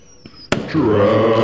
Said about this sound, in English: That reminds me, did you hear any fireworks over the 4th? Fucking hate fireworks so much.